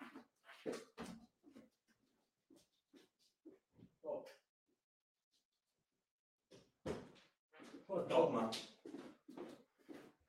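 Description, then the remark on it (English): A dog named Bobby whimpers and grunts in short, uneven bursts as he is being let out, with a quiet gap midway before a louder, busier stretch of whining and snuffling near the end. “Dog, man.”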